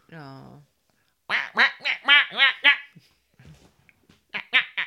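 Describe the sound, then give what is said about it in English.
Quacking, duck-like synthesizer notes play in a keyboard solo, a bouncy run of about five nasal bursts, then a quieter stretch and two more quacks at the end, loud and up front. “no one likes … Mad Duck keyboard solo”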